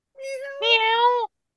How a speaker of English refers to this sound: That was the real star of the show, the kitty cat.